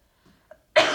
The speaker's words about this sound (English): Oh my God, excuse me, guys. I can't stop coughing.